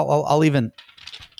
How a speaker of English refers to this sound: I'll even make the paper sound, even though it's not on paper. But it was real paper. That was real paper. I was shaking around. You have a future as a Foley artist if you want.